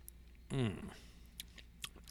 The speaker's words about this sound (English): Now, I'm giving it what's called the Kentucky Chew. So I actually chew it just a little bit. Goes around my palate.